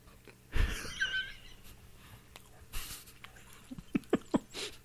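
Wet chewing with a burst of smacking at first, then quieter mouth noises and a quick run of sharp, moist lip smacks near the end. No one speaks.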